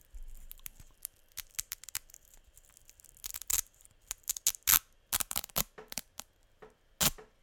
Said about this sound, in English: More ASMR. I'm still playing with Velcro.